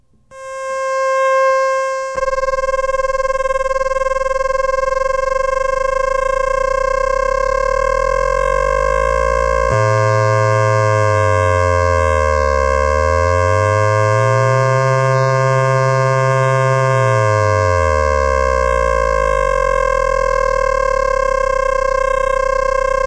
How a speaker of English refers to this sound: Now a triangular wave. This is amplitude modulation, which of course produces combination tones when the controlling oscillator is within the audio range.